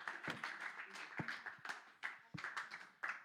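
A church audience claps for Jesus after testimonies, a dense, sustained burst of hand clapping, many overlapping sharp claps forming a steady crackling roar, with no voices standing out.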